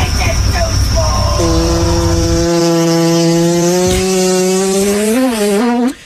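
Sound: fart sound effect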